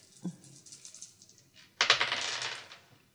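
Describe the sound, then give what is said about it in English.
A soft rattle, then a burst of clicky clattering as two dice are rolled and tumble across a hard surface for about a second, fairly loud, with no talking. “would you roll 2 dice for me, please?”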